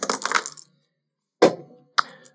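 Three dice rattle briefly in a cup or hand for a survival roll, then two sharp clattering hits land on a hard surface about half a second apart. Fairly loud, with no voices.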